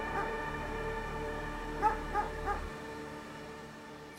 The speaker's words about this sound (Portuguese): E aqueles cachorros latindo, latindo, latindo. Eu falava: meu Deus, protege, porque se soltar os cachorros vai vir aqui na gente.